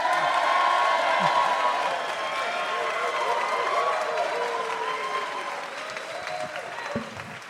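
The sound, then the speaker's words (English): An audience at the UK Pun Championships screams and shouts loudly and continuously to vote for a contestant, mixed with applause, the roar holding steady for several seconds before easing slightly toward the end. “If you think there should be some new blood in the system, scream.”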